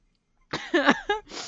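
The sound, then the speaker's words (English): A short fit of coughing from someone who is sick: three harsh, raspy bursts in quick succession after a moment of silence, the first longest and loudest, with a hoarse voiced rattle to each. “Also sorry, I'm coughing a lot.”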